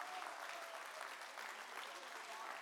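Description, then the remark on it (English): Sustained applause from a church audience clapping heartily to the Lord in praise, a dense steady wash of clapping at even loudness throughout, with faint murmuring voices mixed in. “Come on, would you put your hands together and clap heartily to the Lord?”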